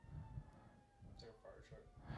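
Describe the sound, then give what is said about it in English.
Faint emergency vehicle sirens wail, thin steady tones beneath muffled voices and low rumbling background noise. “The firefighters and the ambulance were there for a fucking few hours.”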